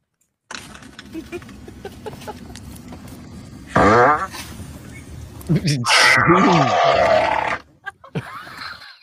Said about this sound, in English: Somebody's lactose intolerant. That's what it says in there. Hashtag fart, hashtag chocolate milk, hashtag lactose intolerant.